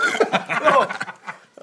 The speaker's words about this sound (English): I went to like do a whiz laugh, but it like forced a burp out my throat.